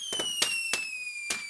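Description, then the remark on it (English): Fireworks going off: a handful of sharp, crackling bangs at uneven intervals, with a steady high-pitched whistle slowly sliding downward underneath them. No voices. “the subject is fireworks”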